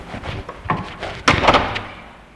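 The door of a new bachelor apartment swings shut with a solid thud, followed by a few sharp metallic clicks as the lock is turned, then quiet.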